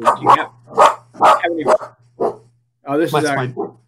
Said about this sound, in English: My dog. He's celebrating the Browns' victory. It's a dog punch. And here he was. He knew that we were going to start talking about the NFL, and right on cue.